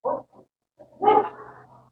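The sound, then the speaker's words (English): An audience member at a church imitates a dog, giving a short yip followed by a louder, drawn-out barking howl, clear with no other talk, after the preacher asks those who have seen the film O Brother, Where Art Thou to bark once. “Bark once if you've seen it.”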